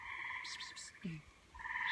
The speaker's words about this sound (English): Listen. Those are the tree frogs. I hope you all can hear the tree frogs. Oh, all right. So beautiful.